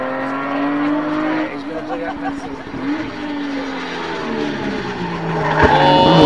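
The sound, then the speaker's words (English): A car brakes hard, going fast into a turn and hard out of it, tires skidding and squealing over a steady engine drone. The sound is loud, sustained for several seconds and swelling again at the end. “Very nice little turn in there. Hard down, fast in, on the brakes. Hard out.”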